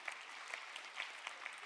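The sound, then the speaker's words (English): Steady applause from an audience for Jonah after the Bible story of Jonah is told, a dense wash of many hands clapping at an even level with a few sharper claps standing out, no voices over it. “You can applaud for Jonah if you like.”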